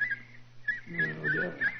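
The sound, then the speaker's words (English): A man whistles a short birdlike song in imitation of a nightingale to signal for help, with brief high trills and warbling phrases over a low, steady background hum. “My whistle is that of a nightingale, a song unheard in Sussex at this time of the year.”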